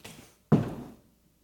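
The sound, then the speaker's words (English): Someone drops heavily into a classroom seat: one loud thump with a brief rumbling settle afterward, preceded by faint shuffling and followed by quiet. “But it came time for class, and I came in, and my seat was there, and I sat down like this.”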